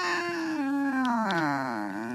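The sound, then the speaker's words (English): A voice mimics a squeaky metal door with one long, whiny creak lasting about two seconds. Its pitch wavers, rises and dips, and the sound stays loud and unbroken throughout. “That's my squeaky door. Squeaky like metal door waking sound.”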